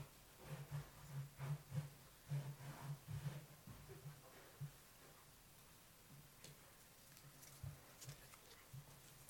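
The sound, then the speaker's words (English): A series of soft, dull thuds and scuffs of feet stomping repeatedly on a ripped, crumpled $20 banknote on the floor, in quick irregular bursts, then a brief final pair after a quiet pause. “Stomp on it.”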